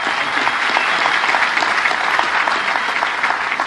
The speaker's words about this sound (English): And I just want to give you a huge round of applause. Thank you.